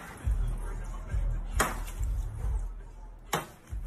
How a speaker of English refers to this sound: And his example of this is him doing the most inefficient tree cutting of all time.